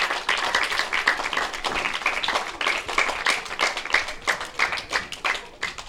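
An audience gives a round of applause for the sponsor Apple Cider and its crew. Many hands clap at once for several seconds in a dense, crackling wash of sharp claps that holds a fairly loud, even level throughout.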